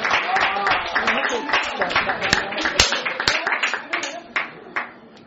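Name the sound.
hand clapping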